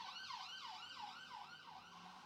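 An emergency vehicle siren wails in rapid, repeating rising-and-falling sweeps, steady and fairly loud throughout, heard alone from outside with no talking.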